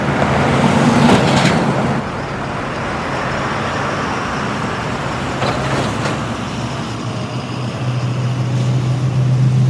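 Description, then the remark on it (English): A full bus idles with a loud, steady engine rumble; a couple of brief hissing thumps as its doors close break through, and the engine note strengthens toward the end as it pulls away. “Okay, chevre, the bus is full, find your seats. The doors are closing and we are leaving now.”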